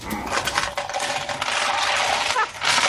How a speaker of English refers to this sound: John is dumping a tray of dice, apparently.